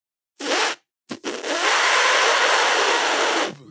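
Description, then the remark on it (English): A voice imitates the hissy, fizzing fart someone might make while wearing a butt plug, like air let out of a balloon: one short breathy burst, a brief pause, then a sputtering start into a long, steady hiss of about two seconds. “I feel like it might make a when you have a balloon and you just let a little air out and it makes that fizziness, that hissy sound.”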